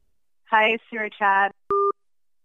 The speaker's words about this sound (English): Hi, Sewer Chat. Oh, geez. The phone line is breaking. Gosh.